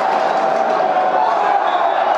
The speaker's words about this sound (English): Great tackle there by Danny Mack. Listen to that applause.